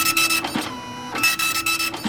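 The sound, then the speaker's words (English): A dot matrix printer rattles out a line with a harsh buzzing screech, pauses briefly as the head returns, then buzzes through another line, loud with no voices. “It's a dot matrix printer.”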